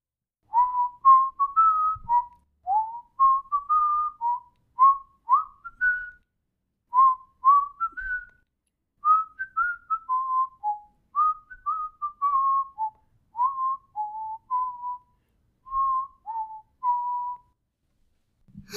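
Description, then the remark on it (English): A person whistles a song melody alone, clear, with a steady stream of short melodic notes rising and falling in a lilting rhythm for nearly twenty seconds. “He whistled the song that Ammu was singing.”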